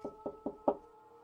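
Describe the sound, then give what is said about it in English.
Four quick knocks on a door in an even rhythm, the last one a bit louder, clear with no voices, followed by a brief hollow ring-out. “Someone is going to come knocking on the door.”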